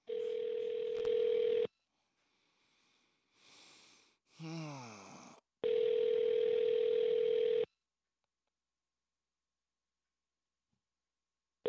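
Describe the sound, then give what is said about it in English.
Telephone ringback on a call to Good Morning America in New York, dialed with *67: two loud, steady, mid-pitched ring tones, each about two seconds long, separated by a quieter pause holding a faint hiss and a brief warbling chirp. “Calling Good Morning America here on the live show.”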